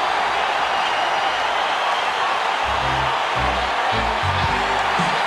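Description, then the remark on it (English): A wrestling crowd cheers in a steady, loud roar that holds throughout after Jeff Jarrett wins the match by pin, with deeper shouts and voices rising out of it in the second half. “The crowd here love it, though.”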